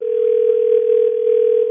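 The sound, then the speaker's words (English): A steady, unbroken telephone dial tone, heard while placing a call, hums at an even, fairly loud level for under two seconds, with no voices or other sounds over it. “can you get her on the phone?”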